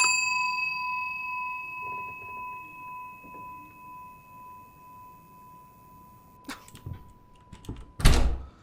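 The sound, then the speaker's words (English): A bell in a video game is struck once and rings out clearly, its tone slowly fading over several seconds, followed near the end by a few sharp knocks and a loud clattering bang. “I take it I have to ring the bell again.”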